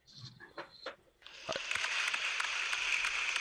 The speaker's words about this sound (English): As he walks out of the studio now with it. He's getting the real applause. Dramatic moment there.